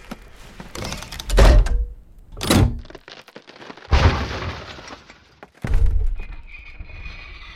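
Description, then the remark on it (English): A heavy trap door thuds open with several loud wooden knocks and bangs, separated by rough scraping and rattling, with no voices. “Trap door. Down, down, quickly.”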